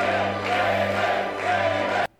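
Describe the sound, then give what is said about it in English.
A large crowd cheers and roars loudly for David Arquette for about two seconds, swelling twice in waves before cutting off abruptly. “The people are cheering for him there.”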